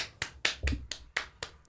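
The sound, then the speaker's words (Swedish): A brief burst of applause played from a sound effect button: about seven crisp, evenly spaced claps in quick succession, moderately loud, with no voices. “Det gick så fort med applåden.”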